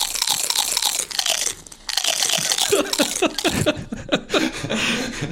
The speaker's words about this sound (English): So it's basically, like, a piano-style keyboard. Each key is a distinct chip crunch sound. And it's fun because you can also, like, adjust the pitch, like...